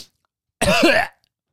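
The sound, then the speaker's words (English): A person imitates a child's cough: one loud, raspy, uncovered burst about half a second long, with silence before and after. “You know how kids just cough?”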